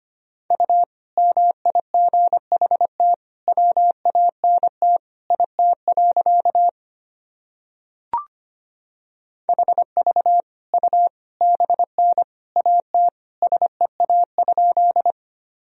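Morse code practice sentences built from common words and abbreviations, sent at 25 words per minute: a single steady mid-pitched tone keyed into rapid dots and dashes, pausing briefly midway around a faint click before the fast beeping resumes.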